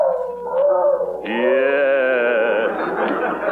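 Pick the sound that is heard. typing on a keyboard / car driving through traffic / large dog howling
large dog howling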